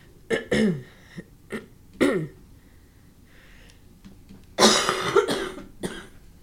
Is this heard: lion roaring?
no